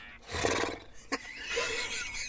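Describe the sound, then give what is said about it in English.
A person vocally imitates a horse's whinny: a loud, quavering, tremolo neigh rising and falling for about two seconds, with a brief sharp break in the middle. “Yeah, you do you want to hear my horse?”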